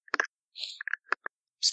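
A few quick key clacks from typing on a keyboard, close and fairly clear, in irregular bursts with short pauses and some soft scraping in between; no voices.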